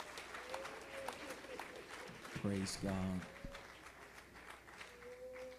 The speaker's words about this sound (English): Could we just clap our hands and thank him for moving in this place?